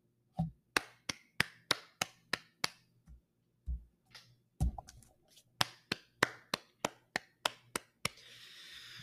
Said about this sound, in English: That's why I stopped clapping.